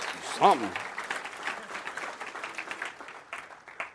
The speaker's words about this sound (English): You are too, I'm going to wait while you clap your hands or do something.